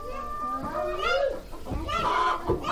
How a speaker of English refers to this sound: And like most places in Africa, Bahoma has chickens scavenging around town. But here, chickens also mean business.